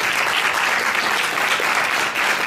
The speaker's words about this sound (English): Let's give God a hand clap of praise for the one who accepted.